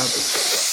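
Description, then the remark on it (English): A person imitates the very high-pitched sound of air going over an airplane's airfoil with a steady, high, breathy hiss held for under a second, loud and bright with no spoken words. “If you want to know what a pure airplane sounds like with air going over the airfoil, it's what the planes sound like as it's a very high pitched sound.”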